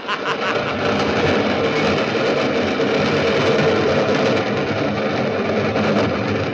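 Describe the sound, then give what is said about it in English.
The 410 train rumbles past in a loud, steady roar, a dense wash of clattering noise that holds at an even level from start to finish with no horn or pause. “Yes, I was waiting for the 410 train to pass through.”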